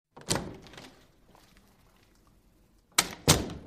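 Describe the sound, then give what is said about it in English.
A side door from a boardroom into a hallway opens with a dull thunk near the start as someone quietly exits, then after a quiet pause it shuts with two quick, solid knocks. No one speaks. “After her damning testimony against Elise Geltz, Veronica Zeller quietly exits the boardroom through a side door into the hallway”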